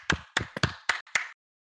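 A short, sparse round of clapping for a group member who has just finished sharing: five or so distinct claps in a steady, even rhythm, then silence. No voices accompany it.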